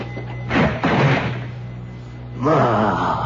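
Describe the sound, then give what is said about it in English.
A few heavy, loud knocks on the wooden door of number 15, Avenida Arequipa, in Cusco, Peru, in a short burst over a low steady hum, followed by a pause before a voice begins speaking. “Carlos Ucala's hope of saving his beloved ran high as he approached the door of number 15, Avenida Arequipa”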